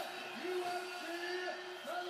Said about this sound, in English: Oh shit, listen to the crowd, man.